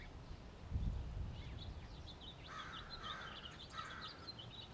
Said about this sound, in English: House finches.